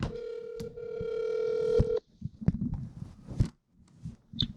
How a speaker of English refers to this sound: Damn. I think I just hung up on you. You did, yeah.